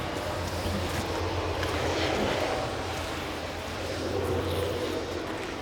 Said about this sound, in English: Let's wait for this train. There's lots of trains today. Busy today, isn't it? Busy yeah.